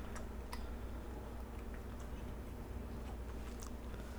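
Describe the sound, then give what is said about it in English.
Someone chewing pineapple and cantaloupe right at the microphone: a few scattered, faint moist clicks and crunches at irregular intervals over a steady low hum, with no talking. “Pardon me as I chew on the mic. I'm having a little bit of fruit.”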